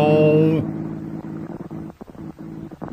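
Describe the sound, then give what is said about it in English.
A car motor sound effect in a radio show sputters, its low droning hum repeatedly cutting out and catching again in uneven bursts, after a brief loud, buzzing tone at the start. “The motor knows Morse code.”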